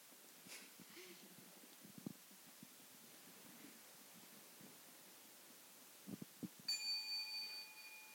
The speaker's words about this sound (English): So our young friends, when you hear the sound of the small bell, I think you know what to do.